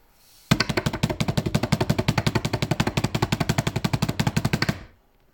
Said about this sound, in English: I know you've not gone ready, but can you give me a drum roll, please?